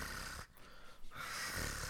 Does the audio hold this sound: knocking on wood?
no